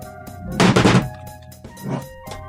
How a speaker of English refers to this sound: Knocked over my speaker.